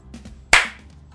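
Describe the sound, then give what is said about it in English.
A single sharp hand clap made just after a recording is started, loud and crisp with a bright burst and a short decaying ring, preceded by faint low murmurs. “And I'm just going to clap.”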